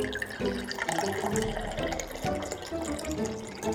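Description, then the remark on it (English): Water pours steadily from a water bottle into a keyhole in a continuous gurgling trickle, moderately loud, running for several seconds with no voices. “You're pouring your water bottle into the keyhole?”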